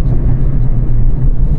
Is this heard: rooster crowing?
no